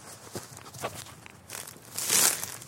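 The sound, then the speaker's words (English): Footsteps crunch through dry bracken on a walk on a blustery April evening in 2017, a few irregular crackling steps that grow louder and brittle toward the end, with no voices. “I'm stepping on the bracken. Oh, that is crunchy.”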